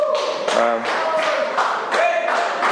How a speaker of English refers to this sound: You can clap. That's all right. If you haven't been here before, we clap.